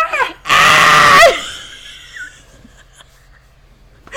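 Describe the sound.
A person lets out one loud, shrill, raspy scream lasting under a second, imitating a pterodactyl's shriek, followed by breathy trailing sounds and quiet background murmurs.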